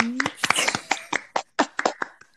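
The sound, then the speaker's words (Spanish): A short, uneven round of applause on The Embassy Show welcoming a guest who streams on Twitch: a couple of seconds of sharp, scattered hand claps from a small group, with a brief voiced sound and a faint whistle-like tone mixed in. “Denle un gran aplauso.”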